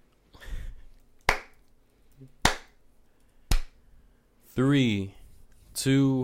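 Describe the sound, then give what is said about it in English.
Three sharp, loud hand claps ring out about a second apart before a live recording starts, each a crisp snap, with a brief voice before them and short bursts of speech after. “Do your little clap thing.”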